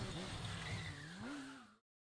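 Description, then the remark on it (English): A loud motorcycle tire screech and crash over the harsh, noisy roar of a revving engine, its whining pitch wavering and climbing for almost two seconds before cutting off abruptly into silence. “There was a crash and a screech, then the hysterical revving of an engine that found no road for its tire.”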